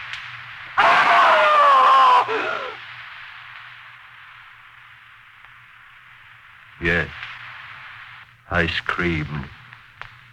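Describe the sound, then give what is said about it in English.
A man lets out a single loud, terrified scream lasting about two seconds, then steady background hiss follows with a couple of short spoken bursts later on. “I screamed so loudly there was blood in my throat.”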